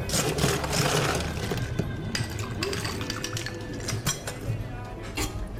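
Dense, rapid rattling and clinking of around six to eight ice cubes shaken very fast and hard in a metal cocktail shaker, loud and continuous for several seconds with a steady churning rhythm.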